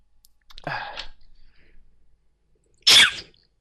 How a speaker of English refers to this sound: Sorry. Bless you. Oh, that was a sneeze. I thought it was just sort of kissing the microphone or something. No, that was just like exploding in this very, very, oh, very, very, very cute, cute fashion. Cat sneezes where they're sort of, oh.